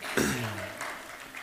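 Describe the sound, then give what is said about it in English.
An audience claps steadily, a dense wash of overlapping hand claps, with a brief vocal whoop rising over it near the start. “Come on, now we can clap, it's all right.”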